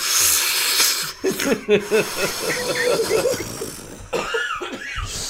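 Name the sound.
imitated smoker's cough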